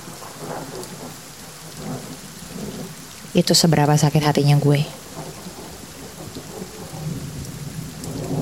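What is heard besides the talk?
rain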